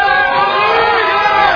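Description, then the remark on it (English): An audience cheers and shouts for orange, one of the colour teams in a cheering competition, in a loud, continuous roar of many voices that holds steady without pauses for the full second and a half. “Come on, cheer for orange. Let's hear it.”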